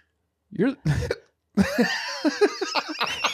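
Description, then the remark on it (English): Two sharp hiccups pop out in quick succession, then after a short pause people start talking and laughing loudly over one another. “I swear you had hiccups on here like just a couple weeks ago.”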